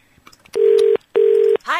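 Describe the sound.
A phone line rings out with two steady electronic ringback tones separated by a short pause, heard loud, while a call waits to be answered, with a brief voice breaking in right at the end.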